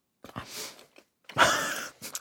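Wet chewing and lip-smacking in a few uneven bursts as someone munches a chocolate cookie with white chocolate, with short pauses between bites and no talking.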